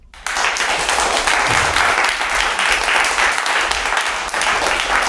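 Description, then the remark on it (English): An applause sound effect kicks in abruptly after a split-second of quiet: a loud, steady wash of many hands clapping that holds evenly for about five seconds, with no voices over it. “So everybody give him a round of applause that's listening to the podcast today, on the intro. I wish I had the media button so I could actually artificial.”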